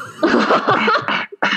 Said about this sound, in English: I have to clear my throat before I say it.